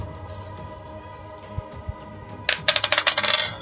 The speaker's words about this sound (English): Let's hope these dice do better.